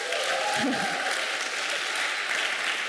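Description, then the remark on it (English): A crowd at a morning church service claps and cheers loudly and steadily for the day's speakers, a dense wash of applause with a few raised voices mixed in, holding at full strength for the whole few seconds. “So let's just give them a cheer this morning.”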